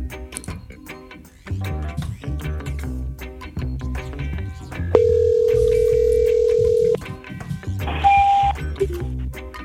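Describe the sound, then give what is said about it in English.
A steady outgoing phone ringback tone sounds for about two seconds, loud, over busy background music, followed by a shorter electronic beep. “I'm gonna make this phone call right here.”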